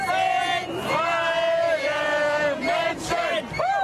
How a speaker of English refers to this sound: We are free people, chants this crowd. During the coronavirus pandemic, they say wearing a mask and adhering to restrictions is violating that freedom.